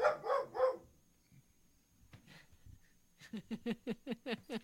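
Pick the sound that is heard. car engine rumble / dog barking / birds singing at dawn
dog barking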